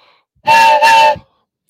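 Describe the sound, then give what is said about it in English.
A loud train whistle sounds in two long, steady blasts separated by a brief dip, the tone rich with harmonics and breathy hiss, then cuts off into silence. “All aboard!”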